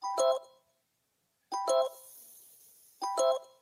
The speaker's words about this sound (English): So I guess we'll just listen to the phone ring.